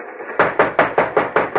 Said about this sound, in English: Now, knock and yell for the guards to open the door to the mail car. They won't open it for me. Oh, yes, I think they will. Now, knock.